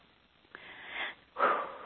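A person breathes deeply during a guided clearing session: a soft, airy inhale followed by a stronger, louder exhale blown out through the mouth, heard alone with no talking.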